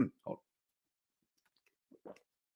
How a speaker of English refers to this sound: Cough. Ah, darn those Reese's peanut butter eggs. They're good. They're good, but sometimes the peanut butter gets caught in the back of your throat.